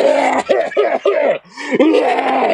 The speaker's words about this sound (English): Sorry. Along with my blacking out, I do go into coughing spells every once in a while.